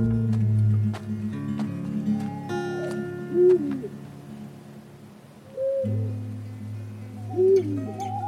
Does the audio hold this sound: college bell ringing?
no